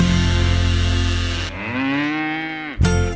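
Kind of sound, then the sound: animal, cow mooing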